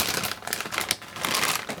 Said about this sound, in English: sorry, pouring out cereal.